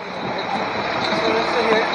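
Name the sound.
bus engine idling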